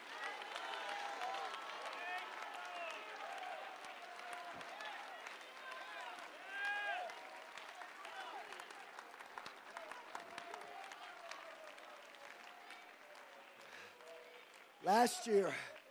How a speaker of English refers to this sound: Somebody, get on your feet and clap your hands and shout.